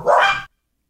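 A single loud dog bark, one sharp woof about half a second long, followed by silence. No one is speaking.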